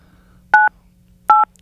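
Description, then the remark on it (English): Two telephone keypad tones beep in sequence, each a steady dual-pitched electronic tone lasting about a fifth of a second, separated by a short pause, with a faint low hum underneath. “You're pushing the buttons there”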